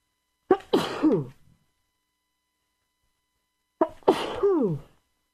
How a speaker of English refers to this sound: Hold on a moment. I have to sneeze.